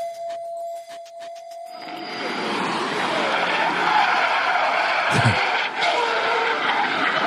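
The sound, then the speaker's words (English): A car engine revs up and roars as tires skid and squeal in a sustained drift on a road, loud, with a brief thump midway and crowd-like noise from spectators standing at the roadside. “These people, they put these videos out of this drifting.”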